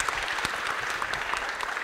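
An audience claps steadily for a presenter of a talk on loudness, a dense wash of overlapping handclaps at even loudness with no voices rising above it, holding for the whole short stretch.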